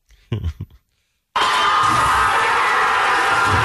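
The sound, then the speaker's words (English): A brief shout, then after a short silence a loud, sustained roar of a crowd cheering and celebrating in a bar, dense and steady with whoops and yells mixed in. “The one thing I was right about was the bar. Okay. It's in a bar? It was in a bar.”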